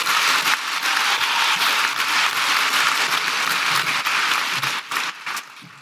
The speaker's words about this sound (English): Folks, our persistence paid off. Please, a round of applause for all of us.